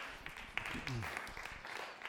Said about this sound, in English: This gal is transformed. I'm just watching the Holy Spirit come alive in her. So if she wants to clap, man, let's pause and let's clap.